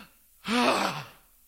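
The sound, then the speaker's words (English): A voice imitates an exhausted, heavy breath: one loud, breathy gasp-like exhale with a voiced, sighing tone, lasting under a second, then quiet. “They've got the exhaustion breath.”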